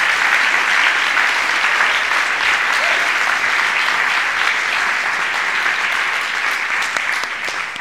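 Steady, loud audience applause fills the whole stretch, a dense wash of many hands clapping at an even level with no pauses, tapering only slightly at the very end.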